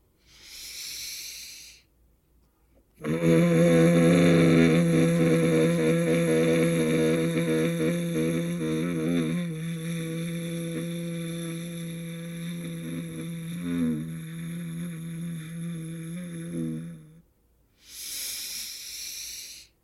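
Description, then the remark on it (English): A long, steady buzzing hum from a voice, held on one pitch for about fourteen seconds as a slow exhale after a deep breath in, framed by soft breathy inhales before and after. “I'm going to breathe in deeply. And then I'm going to exhale slowly with the buzzing sound.”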